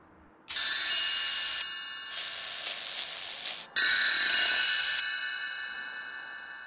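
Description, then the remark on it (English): Three loud bursts of spray hissing, each lasting about a second, with short gaps between them and a faint lingering ring after the last one, as a speaker sprays himself and a companion held in his arms. No one speaks. “Now, get into my folded arms, and I will spray us both.”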